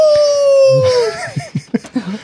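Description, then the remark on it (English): A co-host imitates a wolf howl: one long, sustained, slowly falling vocal tone lasting about a second, fairly loud, followed by short bursts of laughter. “Our co-host has just turned into a wolf.”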